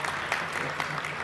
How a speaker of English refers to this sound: And if that's not worth a little applause, I don't know what is.